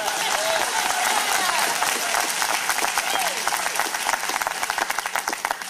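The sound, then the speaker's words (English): A large audience, clapping together on a count of three, bursts into dense, sustained applause, many hands clapping at once for several seconds, with a few faint voices rising through the noise before it gradually thins out. “All right, let's clap on the count of three. One, two, three.”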